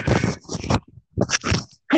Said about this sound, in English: Bless you. Excuse me, man. Thank you. Thank you, man. I appreciate it.